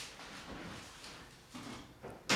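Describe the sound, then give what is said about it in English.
Soft scuffling and shuffling on a kitchen counter, where a cat has jumped up and is trying to eat a baguette, ending in a sharp clatter as the cat gets knocked off; brief, with no voices. “Thanks for knocking him down.”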